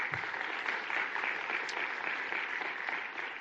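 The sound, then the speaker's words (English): A crowd in Richmond applauds the city's partners and residents during a budget address, a dense wash of clapping hands that holds an even loudness for several seconds with no voices over it. “Let's give them a round of applause if we could.”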